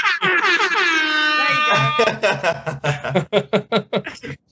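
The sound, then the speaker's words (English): A loud, sustained horn-like blast lasting about two seconds, seemingly a voice imitating an air horn, followed by bursts of chuckling and choppy talk. “What we need is an air horn.”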